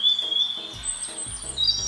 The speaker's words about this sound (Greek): Επιτέλους, η παγωνιά του χειμώνα τελειώνει. Τα πουλιά μας ξυπνούν το πρωί. Ακούτε?